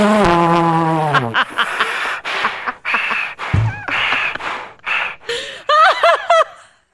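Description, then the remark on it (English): A person breathes noisily through the mouth in a quick, irregular series of airy huffs, opening with a sustained hummed tone and ending with a few squeaky voiced gasps. “That's what it would sound like if you were breathing through your mouth.”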